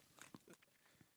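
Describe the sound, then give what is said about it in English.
Quiet crunching from someone chewing crunchy protein waffle crunch cereal, a handful of brittle bites in an uneven rhythm over about a second, with no talking. “Fuck you, eating dude, a honeycomb? Dude, he's got a waffle crunch, bro.”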